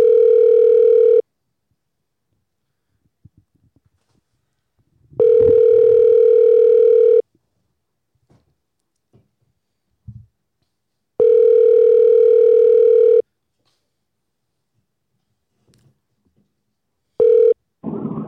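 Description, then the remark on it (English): A phone ringback tone repeats in steady two-second bursts separated by silent gaps, about four rings in all, loud and clear with no one answering and faint clicks between, from a call to a man's cell phone in California. “Sometimes they're not going to pick up.”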